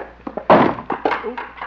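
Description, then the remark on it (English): A chair is accidentally knocked over, toppling with a heavy, loud thump, followed by a few lighter wooden clatters and knocks as it settles over the next second. “Didn't mean to knock over the chair.”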